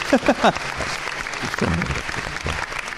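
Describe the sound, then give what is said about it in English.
A crowd in Berlin applauds the event's sponsors steadily for about three seconds, a dense wash of clapping filling the room, with a few brief voiced whoops or calls rising over it near the start and middle. “Everyone give them a round of applause.”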